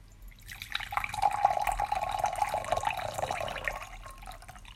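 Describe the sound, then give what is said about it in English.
Brewed tea from a second steeping, steeped for 20 seconds, is poured steadily into a vessel for a few seconds, a trickling and splashing stream that swells and then tapers off, with no talking. “So let's go ahead and pour this out in a couple seconds.”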